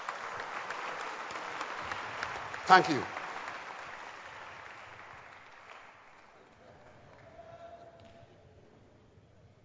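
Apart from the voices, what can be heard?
audience clapping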